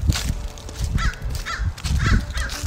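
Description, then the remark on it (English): Crows cawing repeatedly in harsh bursts, several calls overlapping, as many birds follow someone walking away, over a steady low rumble of outdoor background noise. “And he's being followed by like so many birds.”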